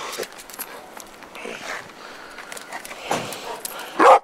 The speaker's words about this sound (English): He goes and lets his dog bark. Just tells him good boy for like... Man.